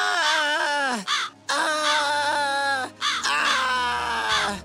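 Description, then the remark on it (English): Harsh, loud screams of 24 blackbirds: three long, strained bursts of shrieking and cawing with brief pauses between them, no talking. “When the pie was open, the birds began to scream.”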